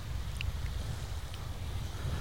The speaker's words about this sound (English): I'm going to just leave you with the sound of the sea here for a while.